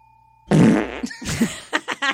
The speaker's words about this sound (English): Oh, I'm sad I didn't get to smell your fart. Never came over here. It didn't. It was not a good one. I got a nice whiff of it.